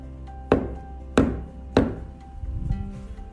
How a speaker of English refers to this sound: Maybe I'll just start banging on the tree and see what happens. And the unicorn walked over to the tree and did three knocks.